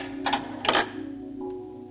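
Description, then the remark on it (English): A quarter drops into a 25-cent payphone-style coin slot on a totem pole: two quick metallic clinks, the second louder and longer, then a faint steady hum with a soft click near the end. “Just swallowed my quarter and that's it.”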